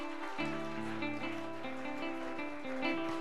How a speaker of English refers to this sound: Encourage him with your hand clap.